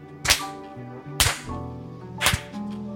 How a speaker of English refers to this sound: It's our clap sports team. Where we just like synchronized clapping. It's a synchronized clapping.